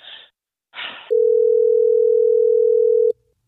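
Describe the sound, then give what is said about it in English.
A couple of short bursts of noise, then a single loud, steady electronic ringback tone holds for about two seconds before cutting off abruptly, as a Hot 101.5 radio show places a phone call on air. “Well, let's try to get Kyle on the phone, Destiny.”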